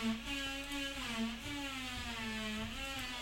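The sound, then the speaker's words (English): A steady, droning drill whine runs without a break for a few seconds, its pitch wavering slightly up and down at a constant loudness, with no one talking over it. “there's a drilling going on, so I'm just going to be quiet for a few seconds so you can hear some drilling as I get the story up.”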